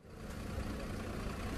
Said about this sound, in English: You see now these buses pulling away with people inside, those travelers being taken away from the airport.